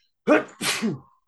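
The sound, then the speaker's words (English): A single loud sneeze, a sharp breathy intake followed by an explosive burst and a brief trailing exhale, with silence before and after. “Bless you.”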